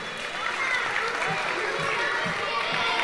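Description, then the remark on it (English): An audience claps steadily for about three seconds, a dense, even wash of many hands at a constant level, with a few low murmurs from the crowd mixed in, giving a round of applause to a volunteer who acted like a game controller. “Okay, give Jimmy a round of applause.”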